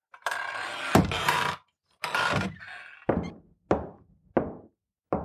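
A saloon door rattles and scrapes as it is pushed open to go inside, followed by four hollow wooden thunks at a steady pace, fairly loud, with no one talking.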